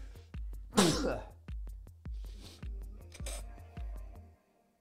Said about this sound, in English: Music stopped for my sneeze. Amazing.